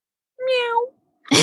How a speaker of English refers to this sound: Hey, she got to meow.